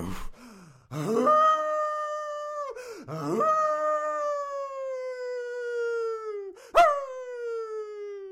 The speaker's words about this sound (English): He rises to investigate, then stops short at the growing rumble of the landslide and the triumphant howl of the coyote.